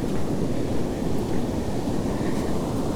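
Steady, loud roar of wind and breaking surf on Gwynfor Beach, with many surfers out in the water; a dense rumbling wash with no pauses, buffeting the microphone and continuous throughout.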